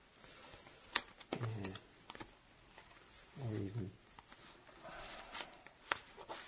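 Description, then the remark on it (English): Playing cards are shuffled, giving sharp, irregular papery clicks and flicks, with a couple of low murmured vocal sounds in between. “Where did you learn to shuffle, by the way”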